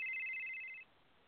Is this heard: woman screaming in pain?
no